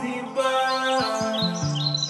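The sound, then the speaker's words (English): Birds chirp and tweet in quick, bright bursts high above a steady musical backdrop of sustained, stepping tones, the calls continuous throughout, where a river meets the seashore. “The birds, the rivers meets the seashore.”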